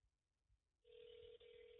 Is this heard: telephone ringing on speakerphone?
yes